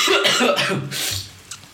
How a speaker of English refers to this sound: Why is it with us burping today?